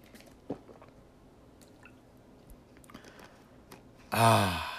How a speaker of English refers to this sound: Excuse me, I need to take a water break.